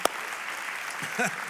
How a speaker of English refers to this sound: You can clap at that, I guess. That's cool.